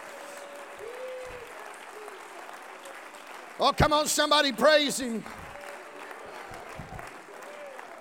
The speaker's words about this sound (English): Oh, come on, somebody clap your hands unto the Lord.